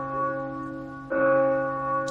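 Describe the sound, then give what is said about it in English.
Church bells toll with a sustained, humming ring, and a fresh strike lands about halfway through, swelling the resonant tone before it slowly fades. No one speaks. “We don't have to sit here and keep listening to all the bells.”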